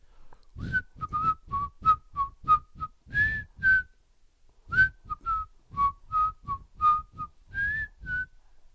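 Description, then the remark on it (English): A wagon driver whistles an unfamiliar tune in two phrases of short, bright, bouncy notes at a mid-high pitch, separated by a brief pause, as the wagon starts to slow down. “and you hear the driver is whistling, and they're starting to slow down.”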